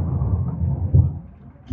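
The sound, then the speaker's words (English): A deep, low rumble of thunder rolls through the whole moment, swelling briefly near the middle, with faint background noise around it. “Sorry, there's thunder.”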